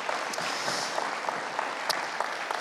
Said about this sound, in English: Hey, would you guys give these guys a round of applause? Thanks, guys.